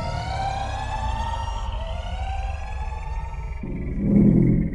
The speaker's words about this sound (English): Is the alarm going off?